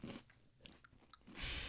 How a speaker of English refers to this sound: So if you hear us munching, we're eating.